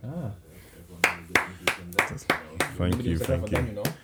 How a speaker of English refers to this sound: Yeah, clapping.